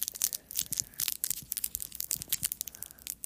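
A wrapper of Fizz candy crackles and crinkles as someone struggles to tear it open, a steady run of sharp, papery plastic rustles and snaps with no talking.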